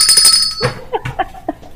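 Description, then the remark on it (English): A hand bell rings with bright, high metallic tones for a moment, its shimmering ring overlapping a jumble of voices that continue talking after it stops. “Here, I got a bell.”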